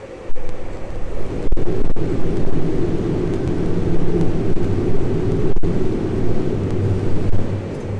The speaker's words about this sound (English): And even though it's not a perfect magnetic bucket for the plasma, we are getting somewhere, with this year a record-breaking run happening at JET, a tokamak in Oxfordshire, producing 59 megajoules of energy and sounding like this.